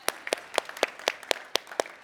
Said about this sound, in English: So, yeah, we can applaud that. We can applaud that.